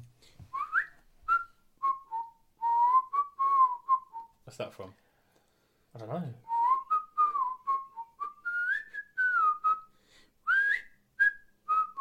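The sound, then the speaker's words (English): A person whistles the melody of a song's whistle interlude, clear and steady, in two phrases with a brief spoken exchange between them. “It's the little whistle interlude from ….”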